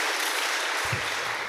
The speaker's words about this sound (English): But yeah, we need to give him a round of applause. You know.